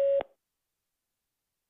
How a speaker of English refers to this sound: Please record your message. Record after the tone. Hit any key when you're done.